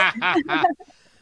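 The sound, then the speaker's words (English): A loud voiced burp breaks into three quick pulses, its pitch wobbling and cracking between them before it cuts off into quiet. “My voice cracked in my burp.”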